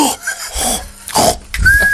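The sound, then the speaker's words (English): A person imitates a cow with several short, gruff mooing noises in quick succession, fairly loud, with brief pauses between them and no spoken words. “turned into a cow.”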